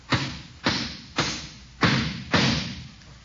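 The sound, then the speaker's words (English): Five hammer blows drive a nail into a board as kids build a hut, each a sharp, solid thud with a short ringing tail, struck at a steady rhythm about half a second apart with no talking. “Why don't you hold it and let me hammer the nail?”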